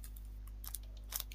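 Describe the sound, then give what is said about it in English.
A packet of fudge cookies from Morrison's crinkles faintly as it is pulled at with teeth to open it, with two short crackly bursts of plastic, set against a low steady hum. No one speaks. “I can't open them. Yes, I'm using my teeth.”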